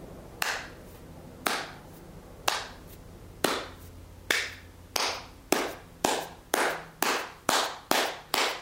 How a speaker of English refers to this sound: I just looked at her. I just slowly started clapping.